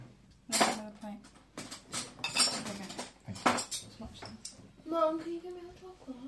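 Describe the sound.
Metal spoons clatter and clink against dishes in several bright, uneven bursts as spoons are set out to eat dessert with, with a voice talking over the rattling.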